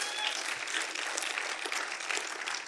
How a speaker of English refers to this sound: Can we clap our hands to the Lord today?